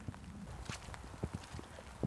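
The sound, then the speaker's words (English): Heavy rain, heard as a steady soft hiss with irregular dull taps and patters of drops striking something, fairly quiet overall and with no voices. “As you can probably hear, the rain's picked up. It is pissing it down.”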